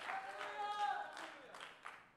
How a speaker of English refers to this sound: Come on and clap your hands. Somebody give the Lord about a few seconds of praise right now.